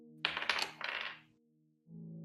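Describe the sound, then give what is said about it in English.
Dice clatter across a hard tabletop in a quick burst of rattling clicks lasting about a second, fairly loud, followed by a steady low electrical hum. “I think my dice are cursed because...”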